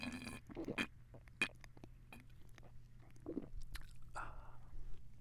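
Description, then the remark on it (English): A drink is sipped for an ASMR segment: a few short, wet slurps and lip smacks in irregular bursts over a faint steady hum, with no talking. “She has your fingers like this while I'm taking a sip. I want a good one.”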